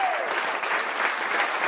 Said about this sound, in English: Let's keep this applause going. Keep it going, keep it going. For the next guest, my wonderful friend from New York, Chris Gethard, everybody. Chris Gethard.